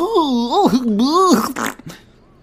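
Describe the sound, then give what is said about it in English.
A single drawn-out fart noise, imitated by a voice, wobbling up and down for over a second, then breaking into a short spluttery burst before fading out. “The fart noise almost.”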